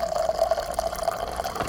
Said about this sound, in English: Get ready for some sound because I'm pouring my wine.